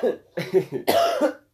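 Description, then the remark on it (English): A loud, sharp sneeze erupts after a few shorter breathy, sputtering bursts, ending in a harsh, noisy blast. No one talks. “Bless you.”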